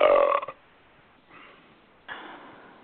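burping

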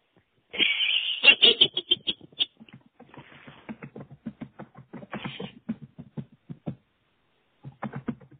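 typing on a keyboard

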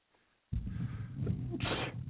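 sneeze

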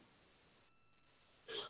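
hiccup

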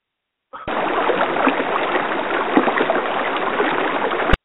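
flowing water sound effect

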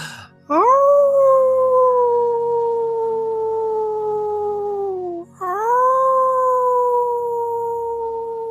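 wolves howling

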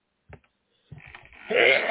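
sneeze

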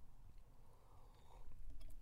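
sipping coffee

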